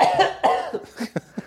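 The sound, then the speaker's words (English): A fit of coughing: two harsh, longer coughs followed by three or four shorter, weaker ones in quick succession, with no talking. “Turn your head and cough, right?”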